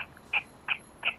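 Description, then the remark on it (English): Three short, squeaky chirps made by squeezing an air pocket out of the mouth, evenly spaced about a third of a second apart, fairly quiet, with no talking. “And then he put like an air pocket in his mouth and he'd squeeze it out and it sounds like this.”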